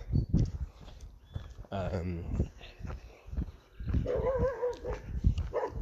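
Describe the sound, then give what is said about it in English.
A dog barks and yelps several times in irregular bursts, loud, near Port Erin, with a man's voice talking over it and some footsteps in the background. “Settle down, dog.”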